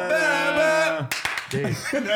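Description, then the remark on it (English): A sustained, sung or played melody of a TV show's theme song gives way to a quick burst of three or four sharp hand claps in rhythm, clapping along to the theme, followed by a voice. “I used to clap every time.”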